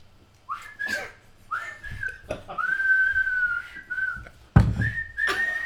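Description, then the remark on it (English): Someone whistles a short tune in a series of sustained, wavering notes around a fairly high pitch, with breathy onsets and a few thumps or rustles between phrases. “I hate your whistling.”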